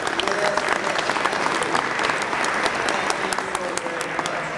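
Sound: round of applause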